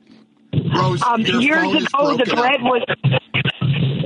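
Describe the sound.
Crackly static fills a broken phone line as a muffled, tinny voice talks through it, the hiss steady and close, with a few brief dropouts near the end.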